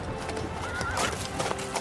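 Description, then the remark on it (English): Tatar cavalry horses whinny and neigh in war over a dense, steady clatter of hooves, as if several mounts are moving together, with no voices in the brief stretch. “The Tatar cavalry yell to each other over the noise of war.”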